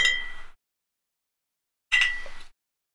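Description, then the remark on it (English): Two 12-ounce glass bottles of imported Mexican beer brewed by Cervecería Modelo clink together twice in a toast, about a second and a half apart. Each bright knock rings out for half a second in an otherwise quiet moment. “Try it. Cheers, brother. There we go.”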